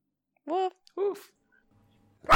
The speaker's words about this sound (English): Woof. No! God damn it, Frisbee! Shut up!